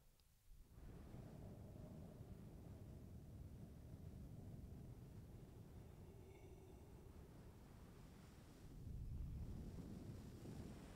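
wind blowing

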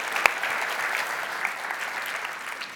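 audience round of applause

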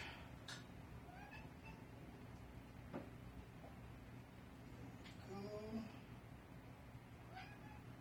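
cat meowing repeatedly

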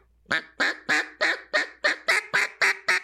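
duck call blown

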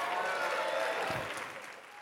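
audience applause

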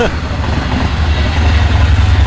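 train passing by

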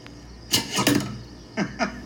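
arrow shot

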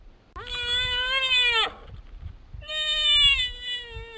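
mountain goat bleating

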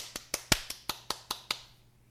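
brief applause

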